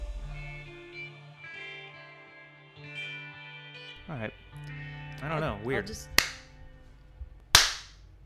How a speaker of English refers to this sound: Your first clap wasn't good enough? I don't know how to clap well. Yeah, I know. I just watched you try to clap and it was like...